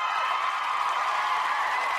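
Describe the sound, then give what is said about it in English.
Steady applause from many hands, a dense crackling wash of claps at an even loudness for about two seconds, with no voices over it. “Claps to him.”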